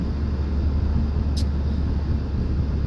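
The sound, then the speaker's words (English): Steady low rumble of road noise from inside a car driving to a restaurant, a continuous droning hum with no speech, plus one brief high-pitched tick partway through. “Like, even this podcast I'm recording in the car on my way to the restaurant.”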